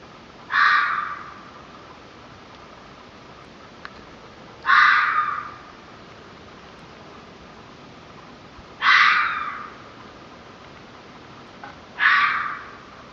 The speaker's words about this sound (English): So all right, let's get into this. This first sound is a red fox, the sound that I heard that morning.